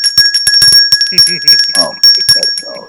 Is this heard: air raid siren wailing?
no